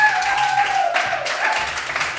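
Audience applause welcoming a guest onto a show, a dense, steady wash of many hands clapping at constant loudness throughout, with a high sustained whistle-like tone gliding slightly downward over it.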